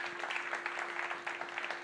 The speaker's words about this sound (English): Come on, y'all give the Lord some hand clap.